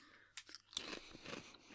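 Crunching of kettle-style potato crisps, a few sharp bites followed by a dense burst of crackly chewing, loud with no talking.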